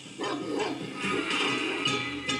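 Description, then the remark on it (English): A stray dog lets out a series of sharp, pained yelps as its throat is cut, several quick cries fairly loud over a constant noisy background. “The crowd parts, and something low to the ground races by, giggling with disturbing glee as the stray dog gives a pained yelp and collapses with a gurgle, its throat cut open from ear to ear.”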